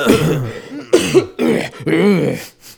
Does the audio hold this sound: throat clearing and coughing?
yes